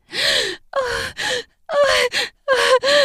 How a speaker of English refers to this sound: She gasps and moans so out of control I can't help but smile.